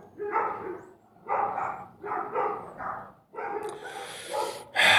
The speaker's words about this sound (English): We got these goddamn dogs outside. Fucking barking at everybody.